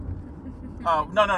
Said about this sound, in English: We're in the car. We're in the car. On the road.